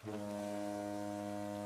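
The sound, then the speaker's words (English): A deep, steady foghorn blast drones across a lake in fog, a single sustained low tone that holds without pause, sounding loud. “Somewhere out on the lake, a bank of fog arose and started the foghorn.”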